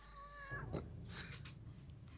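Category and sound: animal, cat yowling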